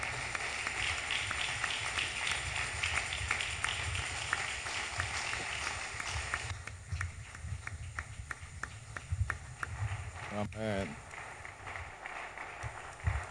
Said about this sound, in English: Oh, please, if you are clapping, yes, just do the clapping.